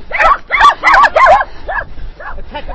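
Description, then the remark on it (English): A dog out with dog walkers barks four times in quick succession, loud, then lets out a few softer, higher yips that fade off. “The dog walkers are out.”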